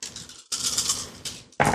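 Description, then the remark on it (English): Nine dice, rolled for damage in a game, rattle and clatter across a hard surface in several quick bursts, fairly loud, with no voices. “So roll those 9 dice.”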